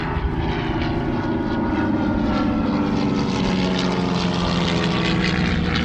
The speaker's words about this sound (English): Of the museum's heritage flight. They might be old aeroplanes, but my God, they sound good. Don't they just?